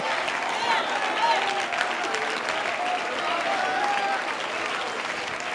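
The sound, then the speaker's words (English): Sustained audience applause, a dense, steady wash of many hands clapping at an even loudness throughout, with faint voices and cheers mixed into the crowd noise. “Oh, clap your hands some more.”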